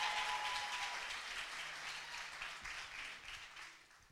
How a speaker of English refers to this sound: Come on, we can do that one more time. A big Promise Center hand clap.